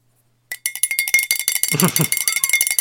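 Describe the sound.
A ship's bell bought on eBay clangs rapidly and loudly, a quick run of metallic strikes over a steady high ringing tone, with a brief low voice murmuring underneath midway.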